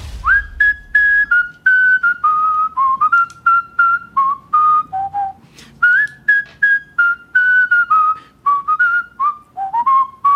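A world champion whistler whistles a lively melody, clear, with pure sustained notes gliding between pitches in phrases that rise and fall, no talking over it.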